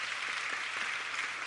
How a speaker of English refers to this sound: Thank you for our youth department. Let's get a youth department a hand clap.